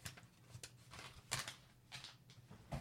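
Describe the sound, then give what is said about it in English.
Dry paper crinkling and rustling in a handful of short, uneven bursts as a letter is unfolded and handled, with quiet pauses between the sharper crackles. “Oh, there's something pinned to it. It's a letter.”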